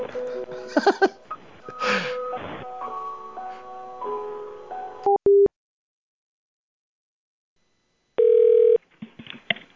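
Telephone tones as a call to a Spring Hill Suites hotel goes through: a run of stepped electronic tones, two quick beeps, a pause of silence, then one steady tone before a voice briefly starts.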